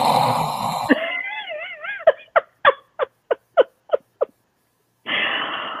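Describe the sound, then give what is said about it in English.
A voice imitates an 8-year-old boy snoring: a wavering, wheezy whine followed by about nine quick, evenly spaced nasal snorts, fairly loud, with a rush of noise before and after. “The boy snores like a grown man.”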